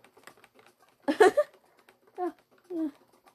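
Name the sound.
rapid computer mouse clicking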